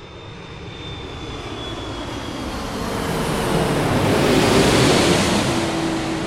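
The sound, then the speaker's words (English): A jet aircraft taking off, its broad roaring engine noise swelling steadily louder over several seconds, with a thin high whine fading early on. No voices. “I quite enjoyed it when that takeoff sound.”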